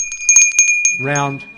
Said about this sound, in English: I still carry that bell around. I haven't put it back in the cupboard yet, because we close with the round seven last week.